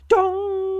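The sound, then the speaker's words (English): A bell, rung by tugging its hanging rope, is struck with a sharp clang, then its mid-pitched tone rings on steadily without fading, over a faint low hum. “You take hold of the rope hanging down from the bell and give it a solid tug. The bell tolls twice.”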